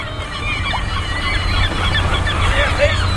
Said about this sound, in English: By the sound of this racket, you wouldn't know but what I live in a seagull colony.